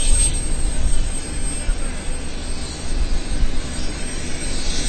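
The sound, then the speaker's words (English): A steady, loud roar of an airplane engine fills the air as people board the plane using the big steps, mixed with gusty low wind rumble buffeting, continuous throughout with no clear voices. “Back onto the plane. Once again, using the big steps. Surprisingly, especially with that wind blowing, surprised he didn't fall over.”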